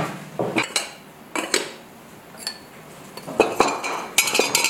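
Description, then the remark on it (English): Ceramic pots, mugs and vessels clink and knock together in irregular bursts as they are taken out of a kiln, bright tinkly contacts with quieter handling sounds between them and no voices. “Some of my favorite videos of his are unloading the kiln, where you can hear all of the tinkly sounds of the pots and mugs and vessels as he takes them out.”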